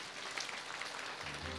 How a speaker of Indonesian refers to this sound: Boleh tepuk tangan kita buat Tuhan.